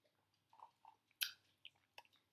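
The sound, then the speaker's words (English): Quiet sipping and chewing of a signature drink called the Soul Leaper, with grass jelly and flan and no boba, on the first sip: soft wet slurps and squishy bites in a few short bursts, with one sharper slurp partway through. No one speaks. “There's grass jelly and flan. I'm gonna drink it first. Right. Okay. First sip.”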